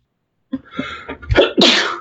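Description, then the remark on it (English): A sharp sneeze bursts out after a quick preparatory intake of breath, loud and explosive with a hissy burst at the end. “Bless you. Bless you.”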